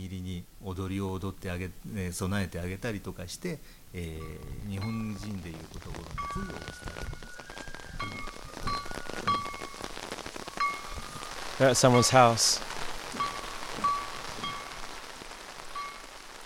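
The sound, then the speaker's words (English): Steady, heavy rain patters on umbrellas at the top of a driveway in Japan, a dense hiss running throughout, with people talking early on and a brief louder burst of sound near the end. “The rain has really packed in now. We're standing at the top of a driveway, huddling under our old lady umbrellas.”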